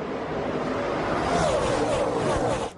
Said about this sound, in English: Clutch shift second gear. We are at Miami Homestead for the Xfinity Series Championship.